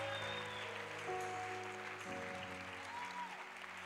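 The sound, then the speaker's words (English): A large crowd claps hands more strongly at the urging of a preacher one morning, a dense, continuous roar of applause, steady and loud throughout, with sustained musical tones faintly underneath. “No, you're going to give a stronger clap this morning. I'm not stopping until you clap the way you should.”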